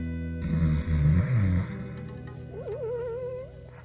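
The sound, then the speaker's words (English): A loud, rattling snore from a man lying on his side rumbles, followed by a thinner, wavering whistle on the out-breath. No one speaks. “Some ways away, Antipa lay on his side, snoring loudly.”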